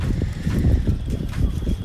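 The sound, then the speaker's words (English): Steady, gusty wind rumbles and buffets the microphone on a windy Sunday morning at the Parkstone Yacht Club, while faint metallic clinks from the harbour boats clanging in the wind tap through now and then. No one speaks. “That's the ambience of all the boats clanging and the wind.”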